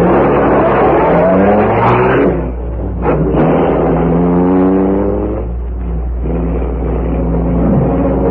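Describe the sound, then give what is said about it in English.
A car engine revs loudly, its pitch climbing in repeated surges as the vehicle accelerates and pulls away, with no voices. “Take the car now.”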